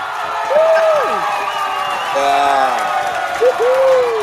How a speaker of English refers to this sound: Where's that applause? Is that my camera? Let me get some cheering going on.